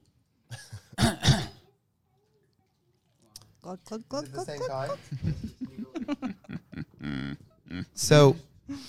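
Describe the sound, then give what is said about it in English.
A short, harsh cough bursts out near the start, followed by a brief pause before a person begins talking steadily. “Cough button.”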